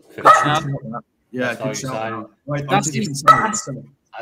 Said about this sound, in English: One second, dog's barking there. He wants to go out.